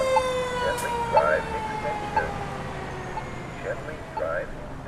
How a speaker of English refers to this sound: And all the sirens and the helicopters.